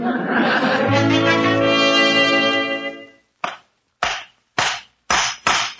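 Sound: hammering on wood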